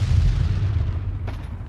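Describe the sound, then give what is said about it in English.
Deep, rolling booms of artillery explosions and gunfire at the front lines of a war fill the air with a heavy, continuous rumble, with a sharper crack breaking through near the end. No voices. “This is a place where the sound of gunfire is the soundtrack to life, where the only certainty is death, and where the only hope is the hope that one day this war will end.”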